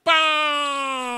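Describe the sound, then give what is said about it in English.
A voice imitates the horn of a family car, a horn that honked every time the car made a left-hand turn. It is a single loud, steady, nasal honk that holds one flat pitch for about a second, starting abruptly and fading only slightly at the end. “Every time we made a left-hand turn in this car, the horn would honk.”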